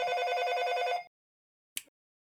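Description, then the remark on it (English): A telephone rings in one rapid, trilling burst lasting about a second, clear, followed by silence and a brief faint click. “Sorry, the phone's going off.”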